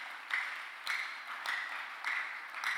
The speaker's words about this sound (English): Give God a big hand clap.